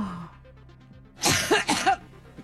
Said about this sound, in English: Someone coughing? Every time I think about Trump, I get allergic.